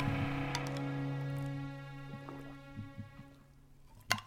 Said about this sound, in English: Yeah, and that is an ice cube you're hearing, guys. I do like a little ice cube in my beer because sometimes I nurse them. I like beer ice cold.